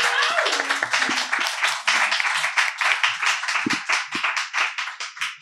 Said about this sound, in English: And I'm going to move to the Magic Silver Box, but I just want to applaud, just quick round of applause for these guys for like doing things for Queens. Thank you.